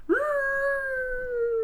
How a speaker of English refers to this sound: Oh, you hear the dog go.